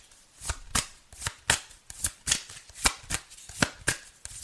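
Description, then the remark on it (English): Tarot cards being shuffled and drawn, a run of about a dozen crisp, papery slaps and riffles in an uneven quick rhythm, moderately loud, with no talking over them. “May I have another card, please?”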